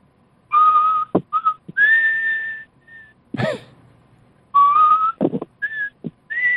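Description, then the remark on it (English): A person whistles the slow bugle-call melody of Taps: long, held, clear notes in short phrases, with sharp breathy intakes and a brief rustle between them. No talking. “Like taps to me.”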